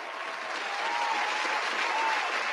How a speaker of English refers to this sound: 72% of the votes, Brock Purdy. Round of applause for Mr. The Brock is hot.